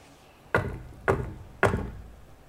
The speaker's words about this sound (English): By a knock at the door.